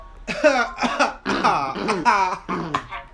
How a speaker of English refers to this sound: He's coughing. Sorry. It took. Do you want water? Do you need water? Should I pour you a glass of water?